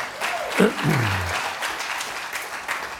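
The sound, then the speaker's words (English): An audience at a sermon claps their hands as a clap offering to the Lord, in a steady, dense burst of applause lasting the whole stretch, with a brief low vocal sweep and murmuring voices mixed in near the start. “Give the Lord a clap offering right there.”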